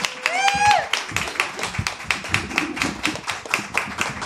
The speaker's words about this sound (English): So please applaud as I sit down. Please clap.